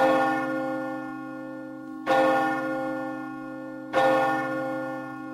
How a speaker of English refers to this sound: During this time, local churches would ring their bells three times in honor of a person in town who just died. It's called the death knell.